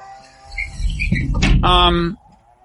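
door being closed

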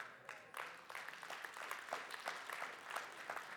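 audience applause

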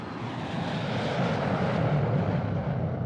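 airplane engine

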